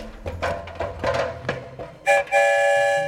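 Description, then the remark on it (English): Sounds of the story train as passengers board: a couple of seconds of rattling, knocking clatter, then a short toot and a loud, steady horn or whistle blast held to the end. No one speaks. “but we are currently boarding the story train.”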